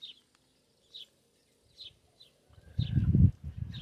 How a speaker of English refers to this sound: And, yeah, here, buddy. Here, Trumpy. My Trumpy chicken. Trumpy El Trumpy. El Boyo Trumpy.